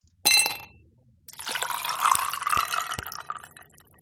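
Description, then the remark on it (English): A brief glassy clink, then a steady stream of liquid pouring into a glass for a few seconds, close up and fairly loud, with no voices. “And now, let's pour ourselves a conversation.”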